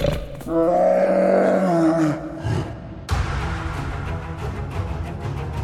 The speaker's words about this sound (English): They turned and bolted while the beast roared behind them.